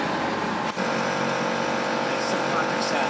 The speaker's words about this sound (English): Guys, I think I found the bass sound. You hear that obnoxious buzz in the background? It's this machine.